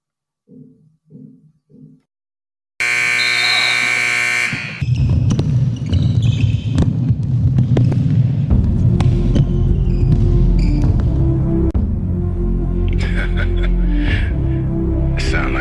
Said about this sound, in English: Sound like some Viking music, don't it?